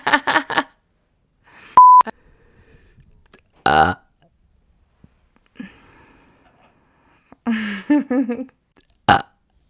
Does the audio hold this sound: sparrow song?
no